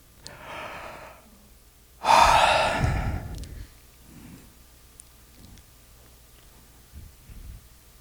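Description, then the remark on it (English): A person gives a loud, drawn-out yawn, preceded by a softer breathy intake and followed by quiet shuffling and faint breaths. “I'm pretty sure if I start yawning, everyone will start yawning.”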